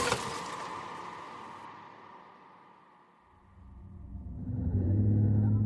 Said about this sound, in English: I hear the sounds of metal on metal, screeching as my car slams into something.